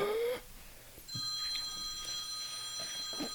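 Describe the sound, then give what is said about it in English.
A phone rings with a steady electronic trill, bright, sustained tones that start after a brief pause and continue unbroken, with no one talking. “Phone's ringing.”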